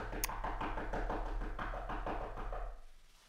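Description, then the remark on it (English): Rapid, frantic knocking on a hard surface, a fast steady stream of taps lasting a few seconds before it stops abruptly, performed as an imitation of someone pounding at a door. “Because it's like frantic knocking, you know. Let me do a little bit of Foley work here.”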